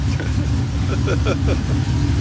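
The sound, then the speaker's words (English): The engine of a daily-driver car revs with a loud, steady low rumble that holds for about two seconds, with a few brief higher tones rising over the drone partway through. “This is my daily driver.”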